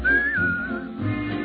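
Someone whistles a short, high tune that holds and glides between a few notes, then trails off, with soft musical accompaniment underneath and no talking.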